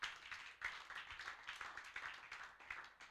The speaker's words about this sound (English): Can you clap your hands for the Lord?